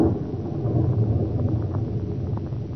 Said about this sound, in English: Good heavens, that lightning must have hit quite near here.